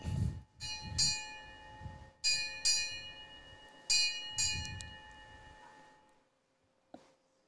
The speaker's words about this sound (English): So it's a naval tradition to strike 8 bells at noon.